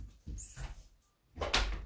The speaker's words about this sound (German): Warte, ich mache die Tür zu.